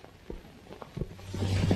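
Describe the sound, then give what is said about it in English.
A handful of dull, irregular hoof thuds from White Cloud, a stolen horse being ridden out of the woods and stopped, moderately loud, followed by a low sustained hum that swells beneath the last beats. “Later, Ellen rides White Cloud, one of the horses stolen, out of the woods.”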